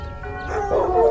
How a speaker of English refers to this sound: The bell tolled twice, and the hounds howled from the backyard.